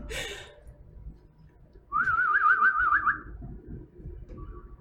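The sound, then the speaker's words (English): Someone whistles a quick warbling, trilling phrase in imitation of a birdcall, about a second and a half long, over quiet room noise with a short rustle at the start. “I hear a bird.”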